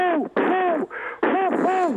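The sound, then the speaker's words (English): A human voice mimics an owl, giving several drawn-out, wavering hoots in quick succession, fairly loud with no other sounds around it. “The owl up in the tree.”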